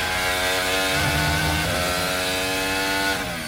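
A Formula 1 car engine screams at high revs at full speed through the last of a series of bends, a loud, steady buzzing roar that holds its pitch for several seconds before easing slightly at the end, with no voices.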